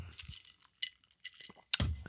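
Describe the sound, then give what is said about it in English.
An ice cube drops back into a glass, making a few bright clinks and rattles spread over a couple of seconds, with soft low handling thumps at the start and end. “Hope you don't want to drink that, because I just put the ice cube back in there, so I didn't crunch it on the air.”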